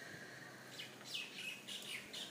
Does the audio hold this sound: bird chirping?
yes